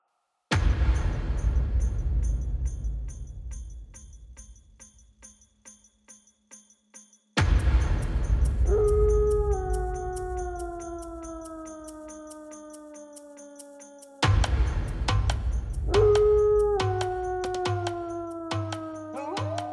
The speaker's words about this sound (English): The howling of wolves had continued to grow closer throughout the day, as the small party of companions discussed their options just outside the circle of stones.